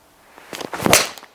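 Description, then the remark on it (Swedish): A single swish of a golf club swinging through, building to a sharp strike on the ball, with no talking. “Åh, slag. Där har vi den.”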